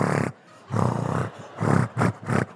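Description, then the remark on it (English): A voice mimics two pigeons mating with a run of five deep, throaty, growling coos, an irregular rhythm of longer and shorter bursts separated by brief pauses, fairly loud and without words. “I remember I was sat at a bus stop and I saw two pigeons getting it on. You know, when they get very big and just a bit creepy and they're just like...”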